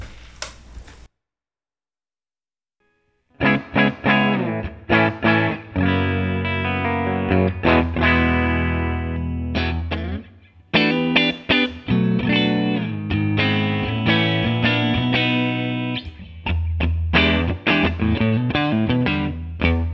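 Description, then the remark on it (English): A Telecaster electric guitar played through an amp with a dry, unaffected tone, picked up only by the mic on the cabinet with the room mic off: after a brief silent moment, it plays a continuous stretch of chords and single-note riffs, fairly loud, with no voices. “So let me run through some dry tones, and then we'll get back to the pedal.”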